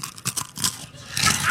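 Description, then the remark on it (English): Someone eating a chip: several quick, crisp bites in a rapid uneven rhythm, then a denser, sustained crackle of chewing, fairly loud with no talking. “That was real crunchy.”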